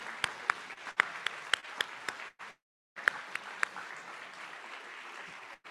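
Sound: audience applause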